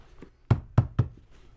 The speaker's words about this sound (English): We might be able to hear them, too. If I just bang on the floor a little bit. Yeah, let's get them riled up before we start cutting.